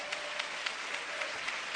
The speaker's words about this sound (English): Why do we clap our hands in church? He said, clap your hands, all your people. Make a joyful noise to the Lord.